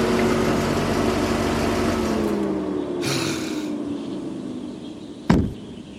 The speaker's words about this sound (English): Ralph Ansbach slammed his car door shut.